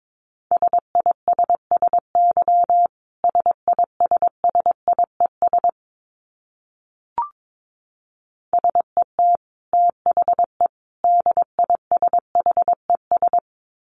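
Morse code sent at 22 words per minute: a single steady mid-pitched tone keyed in quick dits and dahs, two runs split by a pause with one soft click, no voices.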